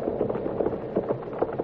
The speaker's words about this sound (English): What is it? Horses. A couple of horses coming in fast.